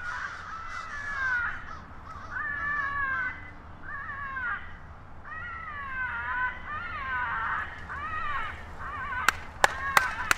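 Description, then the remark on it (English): A steady chorus of harsh, repeated caws from hundreds of crows in a tree at twilight, then the calling falls quiet as a distressed-crow tape plays from a speaker, and four sharp, loud hand claps ring out in quick succession, sending the birds off the tree. “They just played tape of a distressed crow. Van sets up a speaker and demonstrates the technique. Listen as all the calling stops.”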